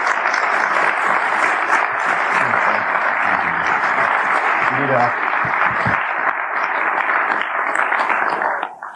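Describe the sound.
An audience breaks into sustained, steady applause for two guests at a live interview event, dense clapping filling the whole stretch at an even loudness before tapering off abruptly at the end. A few voices are faintly audible underneath.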